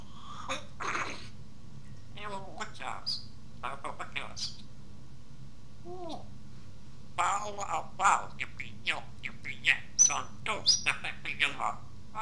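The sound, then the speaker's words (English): An African grey parrot named Santos, owned by musician Steve Wickwire, lets out a rapid, rhythmic stream of speech-like chatter mixed with sharp squawks and whistles, fairly loud, imitating rap-style vocals in quick bursts over a low steady hum. “Some African gray parrots even have a musical flow if they grow up in environments with music.”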